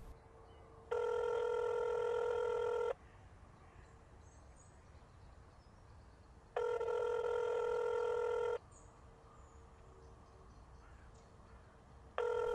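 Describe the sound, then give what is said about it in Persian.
A telephone rings in long, steady electronic bursts as a call is placed, three rings about every six seconds, with a faint hiss and outdoor noise filling the gaps between them. “بعد یه ماه زنگ زدم.”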